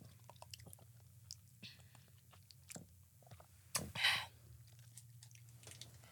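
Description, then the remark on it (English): Chewing of crunchy candy, with a steady series of small crisp crunches and a louder burst of crunching near the end, with a low hum underneath. “They're very crunchy. I don't like crunchy stuff.”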